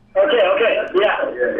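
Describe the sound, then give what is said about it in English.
Tinny, narrow-band voices leak back through a caller's phone line, a delayed echo of the radio show playing on the caller's own radio, steady and fairly loud, with only a brief pause in the middle. “Like, our show is being done for us by somebody else in the Echo version.”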